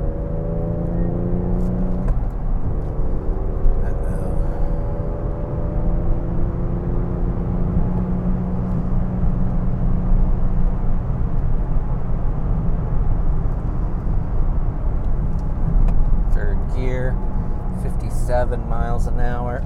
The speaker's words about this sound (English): Another 30 kilometer an hour corner here. Let's just take third. I have my traction control off.